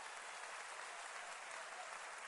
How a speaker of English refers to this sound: Clap your hands for the Lord one more time.